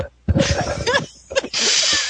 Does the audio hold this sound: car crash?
no